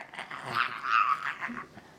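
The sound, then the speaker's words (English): A voice imitates a cougar's growl, a raspy, rising snarl that swells loudest mid-clip and trails off, fairly loud with no other speech. “That cougar is growling.”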